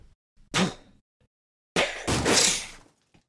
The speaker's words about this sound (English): as the smoke spirit breaks the doors to the conservatory and makes their way toward you.